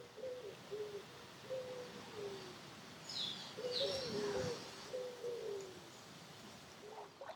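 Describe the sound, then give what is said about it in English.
Several mourning doves coo in a morning chorus on St. Lucia in overlapping, soft hooting phrases, with a few higher bird chirps mixed in over a steady outdoor hiss. “Morning Dove Chorus on St.”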